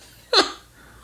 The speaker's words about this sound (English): Burp, by the way. Whoa. Oh, yuck. That's hopsy and lemonade-y.